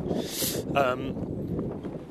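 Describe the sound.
Strong coastal wind buffets the microphone in a steady, rumbling low roar with gusty surges, and a brief muffled voice-like tone briefly rises above it. Recorded on a sunny day while cycling along the coast, just leaving the town of Seascale.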